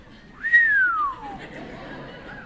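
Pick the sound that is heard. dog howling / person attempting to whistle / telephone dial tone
person attempting to whistle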